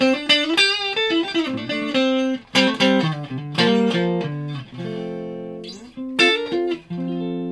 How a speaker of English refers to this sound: So through a clean sound, I'm going to go tones all out, and neck pick up, this is what we're getting.